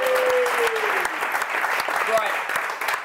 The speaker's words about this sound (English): Oh, round of applause for Jasper.